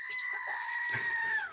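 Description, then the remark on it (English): A small toy goat lets out one loud, sustained, strained bleat lasting about a second and a half, with a shrill, rooster-like quality. It is heard on its own, with no talking. “My brother got me this little goat. And it's a reference to Goat Simulator 3”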